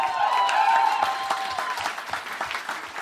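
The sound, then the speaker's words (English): An audience claps in a brief burst of applause, the sharp, uneven hand claps strongest at first and then thinning out into scattered, lighter claps. “Some claps there, haven't seen it, I know that.”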